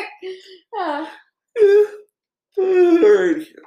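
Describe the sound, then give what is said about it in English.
A person yawns aloud, letting out a few drawn-out, wavering voiced moans with short pauses between them. The last stretch is the longest and loudest. “Oh, I'm yawning.”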